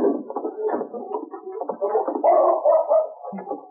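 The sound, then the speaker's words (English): A wet dog named King whines in a steady run of high, wavering whimpers that rise and fall in pitch, growing slightly louder toward the end, with no talking over it. “I hear a dog.”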